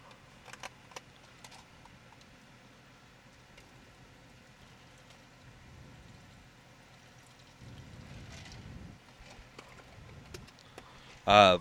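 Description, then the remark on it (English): A drink is poured from one cup into another, a soft, quiet trickle lasting a couple of seconds amid low background noise, followed by a sudden loud burst at the very end. “You want me to spill some in yours?”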